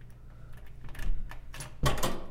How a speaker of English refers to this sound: If you give me a moment, just gotta unlock my door.